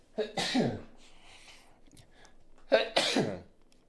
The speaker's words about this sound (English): Hold on, excuse me, I gotta sneeze.